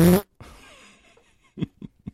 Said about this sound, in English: You just wanted to get a fart noise in.